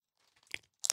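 Crunching of someone chewing a hard, brittle powder-filled candy: a few soft crackly bites build to one sharp crunch midway, then a louder burst of crunching at the end, with no talking.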